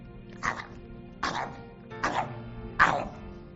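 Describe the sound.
A person imitates lapping up water with the tongue like a dog, making four short, wet mouth sounds in a steady rhythm, each a brief breathy burst, moderately loud, separated by quiet pauses.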